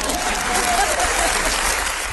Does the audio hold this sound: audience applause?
yes